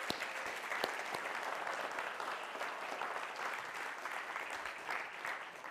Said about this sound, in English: We've got at least a dozen, huh? We just want to applaud you guys.